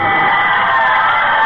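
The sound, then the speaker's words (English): A crowd cheering at a night game between the Brooklyn Debutantes and the Dead End Girlies: a loud, steady roar of many voices blending into a continuous wash of shouts and whoops, with no single voice standing out. “Say, what a crowd here tonight.”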